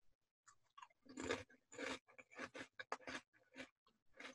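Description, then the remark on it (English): Crunching of a spicy chip from a Japanese snack box being chewed, a run of sharp, crackly bites at an uneven rhythm with brief pauses between, heard alone without any talking. “Very crunchy.”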